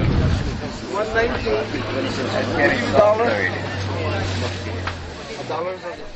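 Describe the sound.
Wind buffets an outdoor microphone on a cold, windy day with a low, rumbling roar that stays constant throughout, while several voices talk underneath and a steady low drone hums along.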